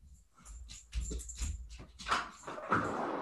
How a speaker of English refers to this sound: You gotta forget my dog in the background, by the way. Just give me 1 second.